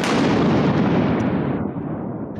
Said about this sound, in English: The lights go down immediately and the movie starts. Boom. That's the explosion sound effect.